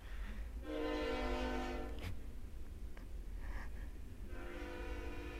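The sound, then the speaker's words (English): A train horn blares in long sustained blasts over the low rumble of a passing train, fading briefly before sounding again, loud with no one speaking. “I was thinking in my head, we better not have an over and under how many trains are going by every day.”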